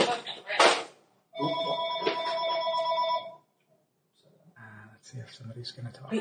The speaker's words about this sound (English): Hang on, phone is ringing.